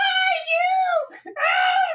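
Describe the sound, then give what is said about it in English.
A shrill, sustained scream with a brief catch in the middle, then a second long wail right after, loud with no other sounds around it. “And just, you know, as your eyes are closing and you start to fall asleep, you hear another scream.”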